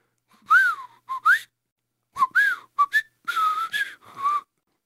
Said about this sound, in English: Try the whistle again.